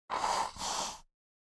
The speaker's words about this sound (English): Hold on one second. You're going to hear me blow my nose. Your boy has a little cold.